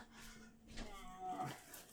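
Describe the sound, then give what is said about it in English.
Two pet cats, one named Smeagol, squabble, trading a strained, wavering yowl and breathy hisses in a short, tense scuffle, with no talking. “My cats just love to hate on each other.”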